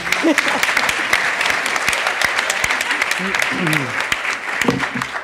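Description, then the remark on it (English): An audience applauds steadily to welcome food writer Joe Yonan, a dense, sustained wash of clapping lasting several seconds, with faint voices murmuring underneath. “So remember that tonight, and let's welcome Joe with a round of applause.”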